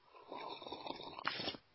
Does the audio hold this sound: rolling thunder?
no